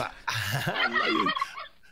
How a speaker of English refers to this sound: turkeys. Gobble, gobble.